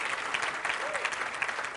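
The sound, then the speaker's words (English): An audience bursts into sustained applause, a dense, steady wash of many hands clapping at once with no pauses, fairly loud throughout, with a faint voice briefly rising through the noise. “Clap better than that.”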